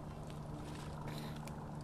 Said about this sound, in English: Sounds like a helicopter. Here, let's turn this up so you can hear the helicopter / plane. They're fucking coming. Oh, they are getting closer.